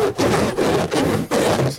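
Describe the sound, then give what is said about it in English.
A balloon from a child's sixth birthday being handled and rubbed, making four loud, rough, squeaky strokes in a steady back-and-forth rhythm with brief pauses between them and no voices. “It was my daughter's sixth birthday over the weekend, so we had a whole bunch of these around the house. So it's a balloon. So I need you to make this sound, okay?”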